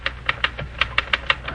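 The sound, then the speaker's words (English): A typewriter clacks away in a quick, steady run of about ten sharp keystrokes, typing a medical article, moderately loud, with a faint low hum underneath and no voices. “Then I'll put this typewriter to bed, warn the telephone to keep quiet, and home I go.”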